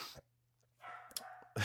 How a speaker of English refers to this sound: I'm just too lazy to get up and shut this dog up.